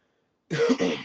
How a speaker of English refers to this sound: You had to cough on that one.